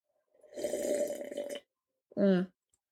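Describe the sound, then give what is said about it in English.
A drawn-out slurping sip of wine from a glass lasting about a second, airy with a faint whistling tone, then a short pause and a brief, louder voiced gulp or satisfied 'ahh'. “So I have a glass of wine to calm me down. I'm about to take a sip.”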